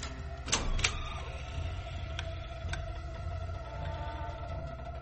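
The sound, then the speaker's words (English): A door creaks as a character comes in, in a long, wavering, tonal groan that rises and bends in pitch, with a few sharp clicks and knocks along the way. No one speaks. “Even the door creaked like a horror movie when he came in.”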